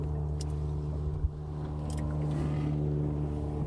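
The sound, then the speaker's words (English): A motorboat engine drones steadily, its low hum swelling slightly as it carries across open lake water, the boat coming down from Inchigill under low pressure, with no voices present. “That boat has come down all the way from Inchigill now.”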